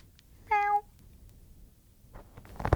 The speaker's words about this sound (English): Meow. Oh. Oh, he scratched it.